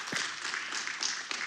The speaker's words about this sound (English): Correct answer. Give this man a round of applause, right?